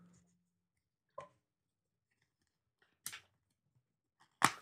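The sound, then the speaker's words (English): Three short, crisp bursts of paper rustling, spaced a second or two apart, with the last the loudest, as a slip of paper with a question on it is pulled out and unfolded during a question-drawing game. “All right, now I see what y'all talking about this paper.”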